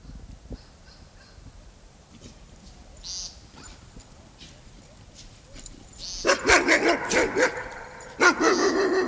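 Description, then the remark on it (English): Several neighbor's dogs behind an invisible fence break into loud, rapid barking at night partway through, a burst of overlapping barks that pauses briefly and then resumes, following a quieter stretch of faint outdoor sounds. “I slowly moved away from the barking, thankful for the neighbor's invisible fence.”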